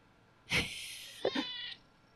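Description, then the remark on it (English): A cat meows twice, a sharp opening cry followed by a shorter, breathier second meow, with a faint hiss trailing between them against a quiet background. “Look at this cat.”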